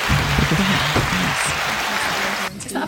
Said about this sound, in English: A for applause. Is there an A button?